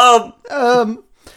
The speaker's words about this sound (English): So, I did a little burp, as I said.